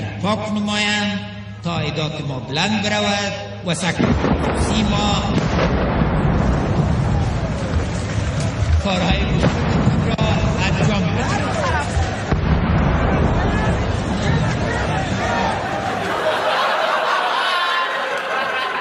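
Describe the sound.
A voice speaks over a loudspeaker during Mr. Ghani's inaugural speech, then a sudden loud explosion cuts in, followed by sustained roaring noise with several more heavy blasts nearby, shaking the building.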